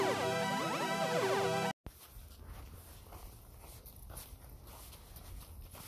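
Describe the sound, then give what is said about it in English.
A brief synth-like musical burst cuts off, then outdoor ambience as someone walks a dog in the afternoon: soft, irregular footsteps crunching along and faint dog sounds, steady, with no talking. “Out walking with the dog in the afternoon, December 4th, 2022.”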